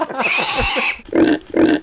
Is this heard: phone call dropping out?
no